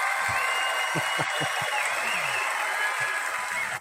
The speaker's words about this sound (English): So I got to go ahead and just, we got to give a round of applause.